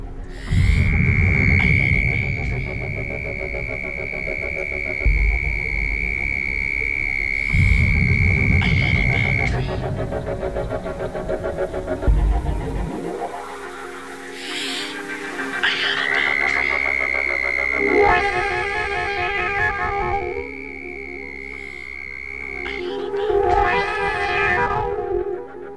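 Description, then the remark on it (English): A southern toad, Bufo terrestris, gives a long, steady high-pitched trill lasting several seconds, made by air forced back and forth over the vocal cords about 75 times per second, then, after a break filled with other murky sounds, a second equally sustained buzzing trill over low background rumble. “In some species, the air is rapidly forced back and forth over the vocal cords at approximately 75 times per second to produce a high-pitched trill of the southern toad, Bufo terrestris, for example.”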